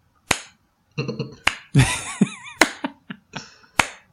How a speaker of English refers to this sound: Do you want to do the slow clap for that one too, or should we? Oh, I'm going to actually. Hold on, give me a second.